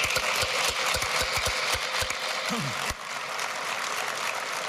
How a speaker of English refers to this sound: One more applause, please.